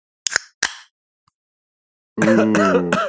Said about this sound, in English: I coughed so your mom wouldn't hear me open my beer.